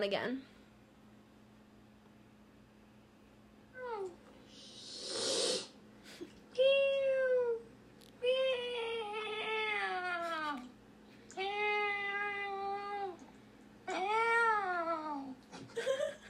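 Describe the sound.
A person mimics a cat for a meow competition with a series of drawn-out, wavering meows separated by short pauses, plus a brief breathy hiss early on, fairly loud.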